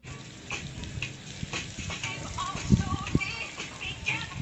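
Water sprays steadily from a small dog fountain fed by a water hose, a continuous hiss and patter with a couple of heavier splashes near the end, while faint voices murmur in the background.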